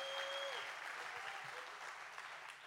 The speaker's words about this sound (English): This is good preaching. You got to give God a big hand clap right now because I'm helping some of you out.